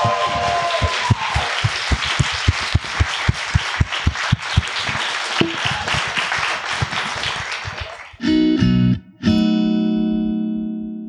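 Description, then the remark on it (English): A live crowd at a live event at the Greenway Court Theater in Los Angeles applauds the guests loudly, dense clapping with sharp individual claps standing out for several seconds, then it cuts off abruptly as bright electronic tones take over. No one speaks. “And please give a big round of applause to our incredible guests.”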